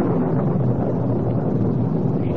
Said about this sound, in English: Thunder.